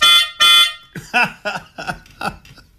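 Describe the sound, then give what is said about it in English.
Two loud, short reedy melodica notes beep in quick succession, mimicking the warning beeps of an airport cart driving from gate to gate in an airport, followed by a voice speaking or vocalizing in short bursts. “So here we are driving from gate to gate in an airport with me doing the beeping sounds on my melodica”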